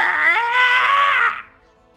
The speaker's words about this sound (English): Next, we have you hear a shriek in this. You hear a shrieking sound. You don't see where it's coming from, but it's a horrific.